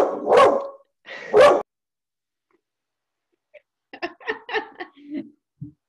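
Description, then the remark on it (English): A dog barks twice, loud, in quick succession during an interview, then after a pause some softer, quieter vocal sounds follow. “I feel like the dogs on every interview we've done want to be involved more than the people.”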